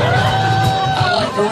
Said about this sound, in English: The crowd's into it. They're taking video on their phone. They're clapping and cheering and singing along as … and the band play hits from the 60s.